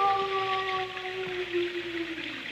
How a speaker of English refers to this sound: What was that? Only the dogs, monsieur. They keep many dogs. Large dogs at the Chateau d'Azay.